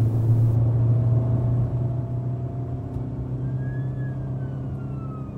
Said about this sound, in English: More sirens out there now. The quiet couldn't last.